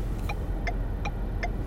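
A car's turn signal ticks four times at a steady, quick rhythm, crisp, over a constant low rumble of engine and road noise inside the vehicle.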